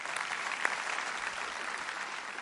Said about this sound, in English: And I'm here to tell you, church, amen. Let's clap on that. Amen.